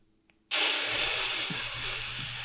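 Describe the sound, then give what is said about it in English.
After a brief quiet moment, a can of spray cheese bursts into a loud, steady aerosol hiss that keeps going for about two seconds as it sprays into someone's mouth. “that's it spraying out into my mouth.”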